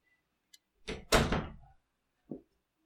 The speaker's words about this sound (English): He's like sitting there fucking pawing at the goddamn door. You can, like, hear it and see it on the audio. It's just like, because he fucking wants into the office.